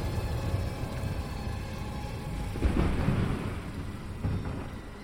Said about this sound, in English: Then it happened. A flash of light obscured the area as a bolt of lightning struck down, zigzagging its way towards the docks. Towards James.